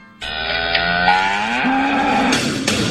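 A cow lets out one long, loud moo, its low drawn-out call rising slightly in pitch partway through, with no talking.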